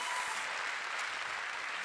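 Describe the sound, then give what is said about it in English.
A crowd claps steadily for the speaker's 19-year-old son who plays college football in Missouri, a dense, even wash of many overlapping hand claps that holds at a constant level for about two seconds without voices. “Yeah, y'all give a hand clap for that.”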